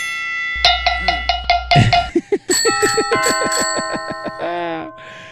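Bells ring in a quick, bright sequence of metallic strikes, first a run of evenly spaced clanks, then a faster cascade of higher tones with lingering ring, loud with no talking.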